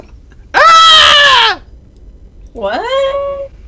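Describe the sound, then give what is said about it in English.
A person lets out two drawn-out, wavering scream-like wails, each about a second long, separated by a short pause; the voice is loud, imitating a scream. “You hear a scream from a couple rooms away.”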